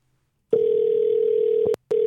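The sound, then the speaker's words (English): A steady, single-pitched telephone dial tone hums for over a second, then clicks off with a sharp snap and briefly resumes after a short gap, with no voices present, as a call is placed to Sheldon Brown, chief engineer for the Toyota Tacoma. “All right, well, why don't you give our man Sheldon Brown a call, chief engineer for the Toyota Tacoma, who is making a second appearance on the Truck Show podcast.”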